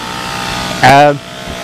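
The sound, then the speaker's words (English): A man starts a chainsaw at the South East Clare show in the showgrounds in Bridgetown on a wet, sloppy day. It sputters into life with one short, loud, buzzing rev that quickly drops away, set against a steady murmur of background noise. “And cheers, there's a fella here starting a chainsaw.”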